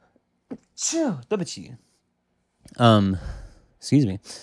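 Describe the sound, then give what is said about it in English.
A few short, breathy catches of breath build up, then a muffled, held-back sneeze bursts out, followed by a brief voiced exhale. No words are spoken. “Sorry as I stifle a sneeze here.”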